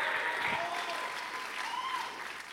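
audience clapping and shouting

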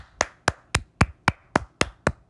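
people clapping

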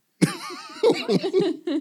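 cough

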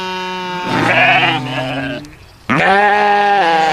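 sheep bleating sound effect

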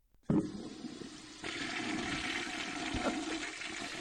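toilet flushing

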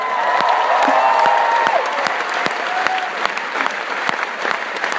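audience applause and cheering

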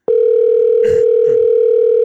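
phone call ringing tone

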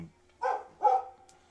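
dog barking

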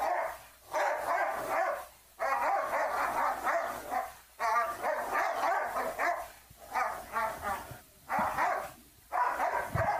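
dog barking

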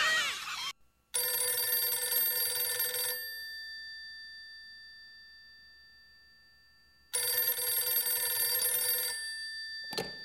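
telephone ringing

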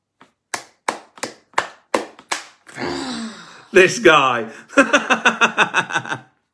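hands clapping

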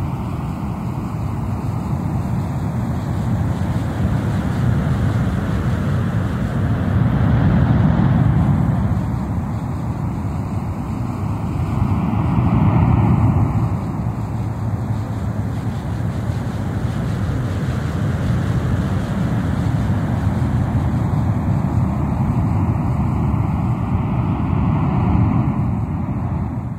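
ocean surf

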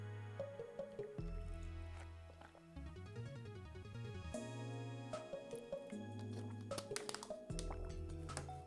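person drinking water

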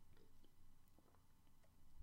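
sipping water

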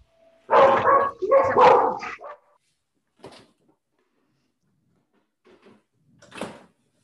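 puppy barking

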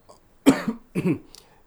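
sneeze or cough

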